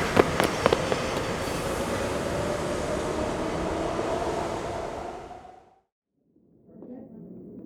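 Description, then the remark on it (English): A train rumbles loudly and steadily, with sharp clanks at the start and a high metallic squeal running underneath. It cuts off abruptly, then faint voices murmur. “Can you make it to the train?”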